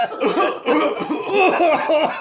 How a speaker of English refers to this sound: This is the Coughcast. Coughcore. Coughcore. Yeah. We bring you cough beats.